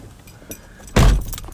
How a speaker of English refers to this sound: Let me lock the door.